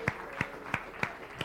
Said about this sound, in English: Let's give another round of applause for our Texas mission team. They are so amazing.